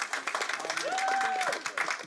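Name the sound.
louder audience applause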